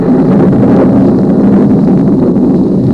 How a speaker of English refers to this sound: Our sound effects man is merely helping me illustrate for our listeners the little-known fact that it can rain inside your watch.